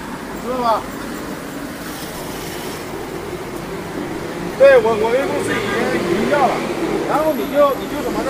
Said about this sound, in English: So that's the traffic. I'm on a noisy road.